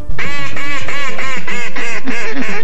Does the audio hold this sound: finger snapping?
no